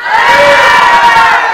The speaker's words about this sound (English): Okay, you don't have to yell as loud as you can. Just make a loud noise, okay? One, two, three.